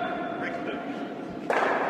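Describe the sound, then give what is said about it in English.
A single solid knock as one curling stone strikes another head-on, right on the nose with no roll, partway through, over a steady hum of curling rink ambience with faint, indistinct voices in the background. “Didn't, no roll at all. Banged it right on the nose.”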